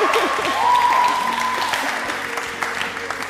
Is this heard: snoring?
no